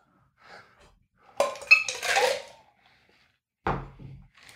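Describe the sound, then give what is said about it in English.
A cocktail shaker rattles with clinking ice while a dirty martini of gin, olive brine and dry vermouth is shaken: a loud, dense burst of clattering lasting about a second, a pause, then a shorter shake. No one speaks. “Shake, shake, shake.”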